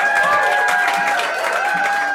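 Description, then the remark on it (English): A pub crowd at the Swan in Great Easton cheers and claps steadily for about two seconds, a loud dense wash of applause with sustained whoops and whistles riding on top, and no distinct speech. “Here we are in the Swan in Great Easton with an amazing group of people gathered together. Let's hear you.”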